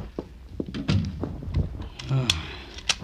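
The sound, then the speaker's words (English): A door thuds shut, followed by a few sharp metallic clacks and scrapes as a bolt is slid and locked, with faint shuffling in between. “The door bolted, locked.”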